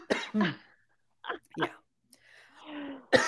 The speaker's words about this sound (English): All right, now I'm having coughing a fit. All right, I'm gonna have to edit that out. All right, It's well, from the dry air.